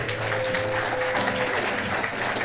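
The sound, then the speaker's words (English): An audience at the Poetry Cafe claps steadily for a performer, a dense, even wash of many hands holding at the same level throughout, with a faint constant hum running underneath and no voices. “Give it up for Don one more time.”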